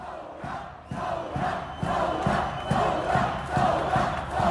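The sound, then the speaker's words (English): A large protest crowd in Lebanon chants in unison, a chant targeting the foreign minister, Jibran Basin, voices rising together in a steady, loud rhythmic pattern with regular emphatic beats, a dense roar of many people filling the background. “One chant specifically targeted the foreign minister, Jibran Basin, who's also the president's son-in-law.”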